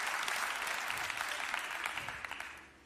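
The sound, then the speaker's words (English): An audience claps their hands in a dense, steady burst of applause, many overlapping claps forming a bright, sustained wash that tapers off toward the end. “Come on, clap your hands, somebody, if you believe in the life-changing power of Scripture.”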